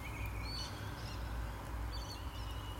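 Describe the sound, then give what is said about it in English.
Scattered high, brief bird chirps and tweets come and go over a steady hiss of outdoor background noise, sounding faint, with no one talking. “Listen to those birds.”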